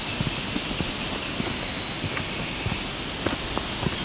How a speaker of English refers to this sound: Aspen, very loud trees in the wind, doesn't matter how much wind, it's going to sound like that.